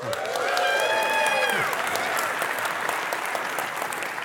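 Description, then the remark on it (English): A crowd of people claps steadily throughout, a dense patter of many hands, with a few cheers and whoops rising over it near the start before the applause carries on alone. “Next week, that starts y'all applauding because I'm gone, right?”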